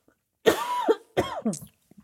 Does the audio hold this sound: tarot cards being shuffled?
no